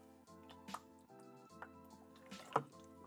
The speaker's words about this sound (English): Give me 1 second, guys. I'm gonna take a sip of water. Fucking mouth's getting dry. Got my giant gallon jug.